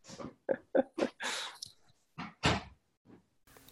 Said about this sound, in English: Let me shut this door. Sorry. Hold on.